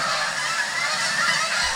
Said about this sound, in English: Those are my geese. All 8,000 of them. They're all mine.